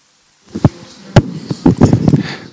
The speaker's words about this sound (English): Is this hissing annoying you?